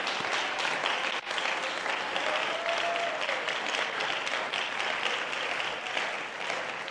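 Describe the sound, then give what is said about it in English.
A church audience claps steadily to the Lord, with dense overlapping applause from many hands filling the room at a fairly loud, even level for several seconds. “Somebody clap your hands unto the Lord right now.”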